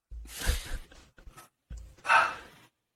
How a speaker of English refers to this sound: They're barking like crazy.